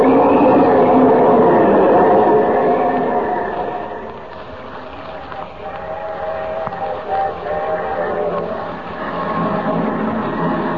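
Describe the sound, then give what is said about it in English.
A train rumbles steadily along the tracks, a loud, continuous clatter and roar with harmonic whines, easing slightly midway before swelling again; no voices. “The train hasn't stopped since I got on.”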